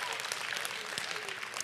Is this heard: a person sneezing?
no